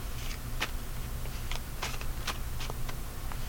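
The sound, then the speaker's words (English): Cards of the Crawly Tooth tarot deck being shuffled, a run of quick papery flicks and snaps repeating irregularly over a steady low background hum, with no voices. “Shuffle.”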